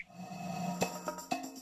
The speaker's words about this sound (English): snap your fingers.